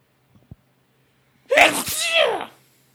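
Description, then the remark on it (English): A single loud sneeze bursts out after a brief quiet pause and a faint click, then trails off into silence. “Gesundheit.”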